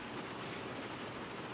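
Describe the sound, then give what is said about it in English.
Steady, dense rain from a rainstorm hisses continuously with a soft drumming texture, heard from inside a Sprinter van as an even wash of noise without pauses. No voices are present. “Mike, you've got some noise in the background. You're not going to like it. Just started a minute ago. I know. It's rain.”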